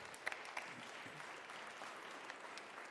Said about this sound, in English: Let's applaud him one more time.